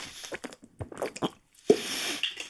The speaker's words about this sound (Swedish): Åh, klunk. Evian från Frankrike.